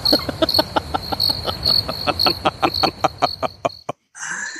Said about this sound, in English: The funny thing is, today I can hear crickets out here in the yard.